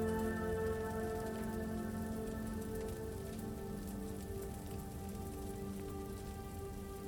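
Steady rain falls evenly, a dense continuous patter at a constant moderate level with no voices or other sounds breaking through.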